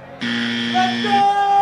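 A loud, harsh hockey arena goal buzzer blares steadily for about a second, its buzzing tone rich and sustained, with crowd noise and faint voices around it before a thinner tone lingers. It marks the end of the game that ended St. Louis's season.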